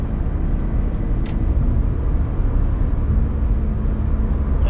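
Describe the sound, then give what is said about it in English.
Steady low-frequency road rumble and engine drone fill the cabin of a car being driven, constant and fairly loud, with a brief faint click partway through and no voices. “Now, unless you are brand new to this episode, you're going to notice I'm in a car, and I'm driving.”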